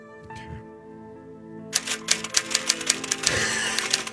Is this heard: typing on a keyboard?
yes